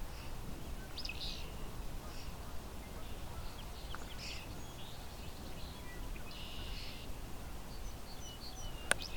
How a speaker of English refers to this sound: As you can hear, the other birds around here, European starling, song sparrows, the occasional barn swallow.